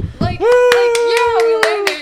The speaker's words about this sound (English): Motherfuckers who purposely applause after the flight is over.